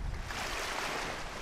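A steady wash of sea waves at the shore, a continuous hiss and rumble of surf at moderate loudness with no voices over it.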